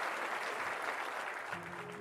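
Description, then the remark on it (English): A crowd breaks into loud, sustained applause as Mrs. Candace Mosler is announced over a microphone and descends a staircase into the crowd, a dense wash of clapping that holds steady throughout, with a faint low tone surfacing near the end. “And the applause erupts.”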